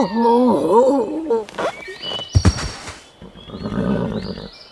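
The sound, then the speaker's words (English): A horse lets out a loud, quavering whinny, then a couple of heavy thumps land as a rider falls from the horse, followed by softer scuffling and rustling. “Am I supposed to infer from your dramatic fall from your horse that you mean you are as thrilled as I am?”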